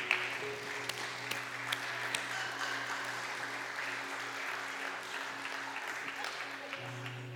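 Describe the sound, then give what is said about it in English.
An audience claps together in a steady, dense patter of many hands that holds at an even level for several seconds, with a low hum running underneath. “You can clap for that.”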